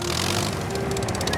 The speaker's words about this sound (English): Kevin is an enthusiastic yellow mobile crane. He's not as big as some of the cranes on Sodor, but he's just as useful. He has four speedy wheels and a long crane arm with a hook at the end, and a petrol engine that sounds like this.